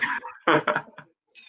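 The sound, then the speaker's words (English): A short burst of several harsh, raspy coughs in quick succession from a person with a cold, fairly loud, followed by a brief pause and a faint higher clink or rustle. “Oh, cough break number two.”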